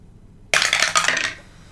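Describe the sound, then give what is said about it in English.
A die clatters across a hard tabletop, a burst of quick rattling bounces lasting about a second before settling, rolled for a perception check in a tabletop game and landing on one. Fairly loud, with no voices. “Roll a perception check.”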